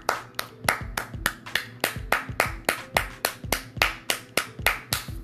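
hand clapping

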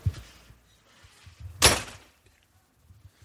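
door being answered

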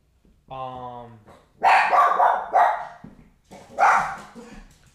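dog barking

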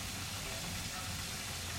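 chicken frying

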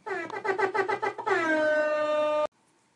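air horn blast

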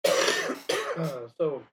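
cough and throat clearing

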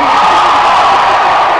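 audience applause and cheering

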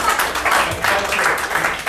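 audience applause

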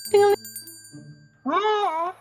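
small bell jingling

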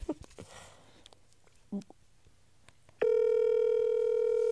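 phone call ringing tone

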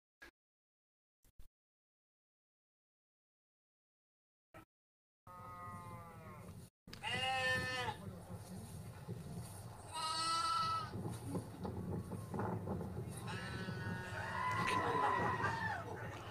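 sheep bleating

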